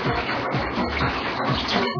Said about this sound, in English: Let's get our bowl ready for our potatoes. Get the water in there.